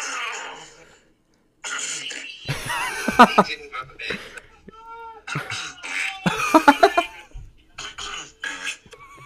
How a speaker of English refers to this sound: Okay, so if you guys remember in one of our episodes, we talked about like trying to hide your fart with a cough, and this guy is rating himself and sitting next to somebody.